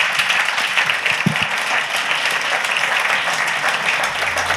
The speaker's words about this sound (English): One more huge round of applause for these great speakers.